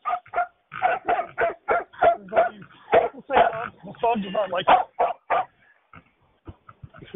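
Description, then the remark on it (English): A dog barks rapidly and persistently at a person, a string of sharp, loud barks in quick succession, trailing off into a few fainter yips at the end. “The dog is barking at me.”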